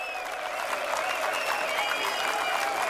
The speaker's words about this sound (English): Why does this make me want to buy beer? Why are they applauding?